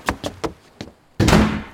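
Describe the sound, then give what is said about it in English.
A few quick, light thuds as a man runs out lead into a loud door slam that hits hard and rings out briefly as it fades. No voices are heard. “He runs out and slams the door.”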